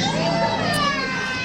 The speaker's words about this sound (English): All right, so you can obviously hear what is quite disturbing, the children crying and screaming in the background, and I'm assuming that it was a fairly chaotic scene